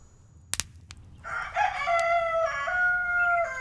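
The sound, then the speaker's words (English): A rooster in a town crows once, a loud, drawn-out cock-a-doodle-doo, preceded by a couple of sharp clicks and knocks in an otherwise quiet space. “Do you have a dang rooster too?”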